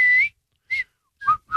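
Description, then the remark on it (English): A person whistles through their teeth a few short, sharp notes in quick succession, shrill, with brief gaps between each burst and pitch bending slightly downward at the end. “I mean, can you whistle through your teeth like that?”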